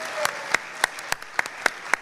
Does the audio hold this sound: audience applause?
yes